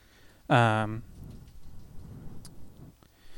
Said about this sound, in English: Today is a rainy, rainy, rainy day.